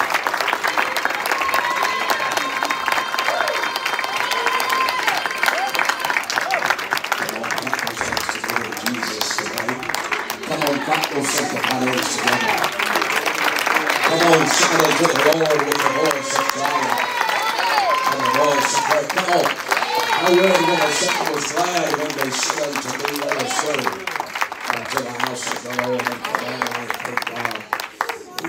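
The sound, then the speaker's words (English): An audience at a worship service claps and cheers steadily for nearly half a minute, giving the Lord a hand clap, a dense wash of hand claps with shouting voices rising through it, loud throughout. “Can you give the Lord a hand clap as he comes today?”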